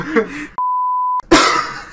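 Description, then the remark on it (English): A harsh, rough cough, briefly interrupted by a steady electronic bleep tone, then a loud, breathy burst of coughing follows right after. “I had the cough, man.”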